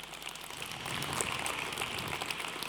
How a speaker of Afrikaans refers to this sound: En kom ons gee vir daardie dansers net weer 'n lekker hande klap.